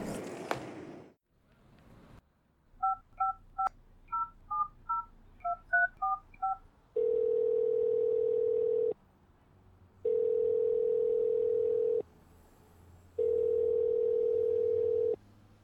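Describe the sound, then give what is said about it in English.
A rapid run of about a dozen telephone keypad beeps as a phone call is dialed, followed by a steady phone tone that sounds in long bursts with short pauses between them, clear. “Let me just make a quick phone call and sort this all out.”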